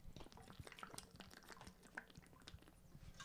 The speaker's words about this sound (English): You're hearing my mouth get all parched. I'm going to drink some water real quick.